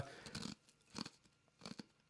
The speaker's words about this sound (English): All I can hear is crunching.